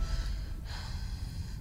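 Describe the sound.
Heavy, breathy exhalations rush along steadily for a couple of seconds, fairly loud, with a brief catch partway through. No one speaks.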